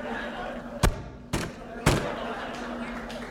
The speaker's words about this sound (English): I thought about how hard it can be on a person's knuckles. Not to mention microphones, to rap on a door that many times.